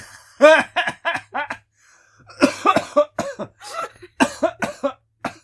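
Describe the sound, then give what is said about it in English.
A person coughs repeatedly in three loud fits, worse after lying down, each a quick run of harsh, voiced hacks separated by brief pauses, with no talking. “I shouldn't have laid down. My cough got worse.”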